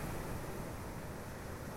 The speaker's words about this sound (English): The methodical crashing of the ocean current against the boat was the only sound heard by the three souls that moment.